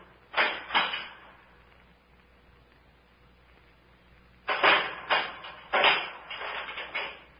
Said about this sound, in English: Someone put something inside the door and closed it again.